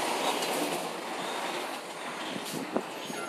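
A large truck rumbles past, a loud, steady roar of engine and road noise filling the moment, with a brief clunk near the end and no one speaking.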